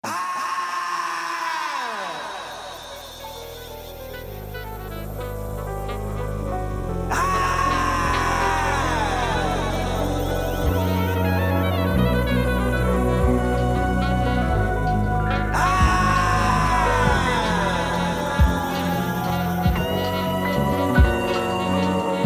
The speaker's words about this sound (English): The track begins with an agonizing scream. Beneath the screams, we hear saxophone flourishes